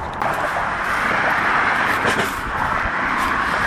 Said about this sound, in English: This is literally how my walk pods were, bro. You could hear the cars going by. You could feel them.